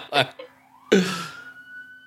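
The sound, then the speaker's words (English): Loud emergency sirens outside an apartment wail, the tone sliding upward and then holding steady, while a couple of short, louder bursts of voice or noise break in over it. “Hang on, there are a bunch of loud sirens outside of my apartment.”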